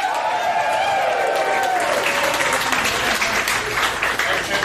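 A live crowd applauds loudly and steadily for several seconds, the dense clapping building after a brief vocal cry or cheer at the start.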